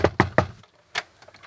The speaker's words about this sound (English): And then a harder knock.